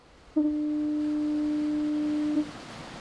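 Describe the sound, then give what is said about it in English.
A single long, steady foghorn blast from a coastal lighthouse on the coast of Maine, a deep sustained tone lasting about two seconds over a faint background hiss, then cutting off cleanly. “Coastal residents fear that the sound that lulled them to sleep will disappear, that classic and comforting fog signal.”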